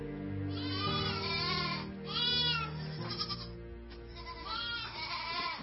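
Several goats, livestock that students care for in a training program, bleat repeatedly and loudly, their wavering, overlapping cries coming close together over a steady low background hum, with no one speaking.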